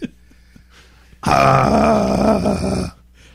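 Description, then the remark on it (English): A person lets out a single loud, raspy growl lasting under two seconds, rough and throaty with a low rumbling pitch, rising suddenly out of quiet and then cutting off. “I growled.”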